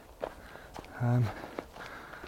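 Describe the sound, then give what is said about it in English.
Soft crunching footsteps on fresh, untrodden white snow on a path in the Cairngorms area on a still, windless morning, at an unhurried walking pace, fairly quiet, with a brief voiced hum from a person partway through. “And I've been treading through virgin white snow on the path.”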